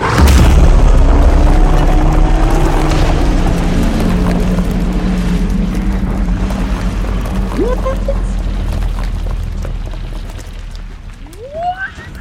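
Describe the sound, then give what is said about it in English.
A huge stone statue crashes and shatters with a loud, deep boom as a stone griffin slams into its back, breaking it into thousands of huge pieces, followed by a long rumbling roar of breaking rock that slowly fades over several seconds, with a few brief high squeals near the end. “And then you hear a roar as the stone griffin sweeps in, claws open, and slams into its back, shattering it into thousands of huge pieces as you go tumbling off it.”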